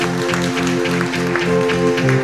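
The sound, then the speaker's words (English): A crowd claps hands in a steady, rhythmic beat, loud, as a clap offering to the Lord during evening worship singing, over sustained musical tones that pulse along with the clapping. “Up a clap offering to the Lord this”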